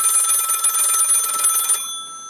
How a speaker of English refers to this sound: Leave a message at the beep.